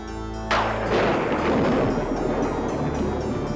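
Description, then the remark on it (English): A sharp, loud thunderclap, the stock sound effect known as castle thunder, bursts in after a brief quiet moment, then rolls into a heavy, crackling rumble that stays strong for the remaining few seconds, with no voices present. “That particular piece of thunder is called castle thunder, and it's a staple sound effect”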